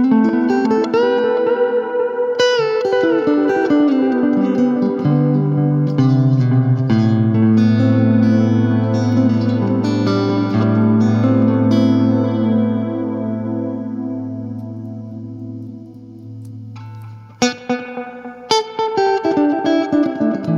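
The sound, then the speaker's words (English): Electric guitar played through a single pedal combining reverb and delay, its notes smearing into long shimmering tails over a sustained low drone, with a fresh bright strum cutting in near the end; no talking. “The reverb and delay together is really cool because they almost feed into each other or something when they're on the same pedal.”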